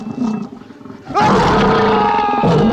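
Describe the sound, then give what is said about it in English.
A monstrous terror dog in a film approaches, letting out a loud, sustained growling roar that surges in abruptly after a low rumbling lead-in, harsh and layered with deep tones and gritty upper harmonics. “And then the terror dog approaches.”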